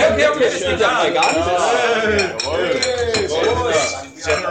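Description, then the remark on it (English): Several glasses clink together in a toast in quick, bright taps, amid a lively murmur of overlapping voices and chatter throughout. “Ich würde mal sagen, wir müssen hier hinten mit angeschossen. Schuss mal mit uns hier vorne an.”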